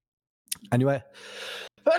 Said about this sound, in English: Sorry about to sneeze.